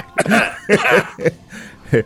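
A person coughs in a short series of harsh, irregular bursts, two longer rasping coughs followed by a couple of quicker ones, fairly close and with nothing else around them.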